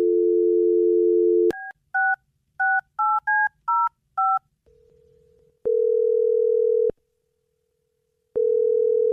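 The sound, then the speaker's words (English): A steady dial tone gives way to seven quick two-tone keypad beeps as a woman's number is dialed on The Jubal Show radio show, followed by long, evenly spaced ringing tones on the line, with no voices. “are you ready to give her a call? I am. Okay, here we go.”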